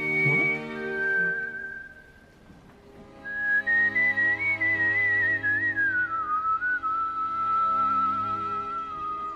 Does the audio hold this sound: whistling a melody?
yes